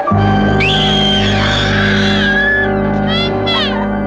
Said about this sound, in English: What other horror cliches can we add? Yes! Creepy whistling! A horror movie staple!